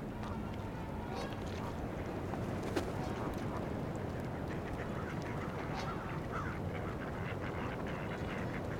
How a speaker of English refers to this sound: Couple male mallards fighting right now.